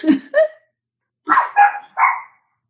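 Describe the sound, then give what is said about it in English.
A dog barks five times: a quick pair of barks, a short pause, then a run of three more. The barks are clear, with no talking over them. “please tell me the mysterious dog bark was coming from your ness.”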